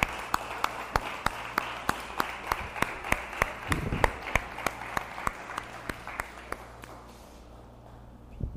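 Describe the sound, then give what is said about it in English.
The men and children in a crowd applaud the women among them one morning, with sharp claps landing in a regular, almost rhythmic beat over a dense wash of clapping, then the applause thins and fades away near the end. “So the rest of us, the non-women, the men and children, can you applaud the women among us this morning?”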